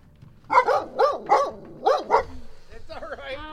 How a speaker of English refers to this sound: She's a puppy. She gets a little excited, so watch her.